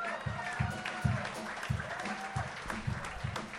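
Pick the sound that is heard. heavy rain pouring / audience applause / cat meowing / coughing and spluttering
audience applause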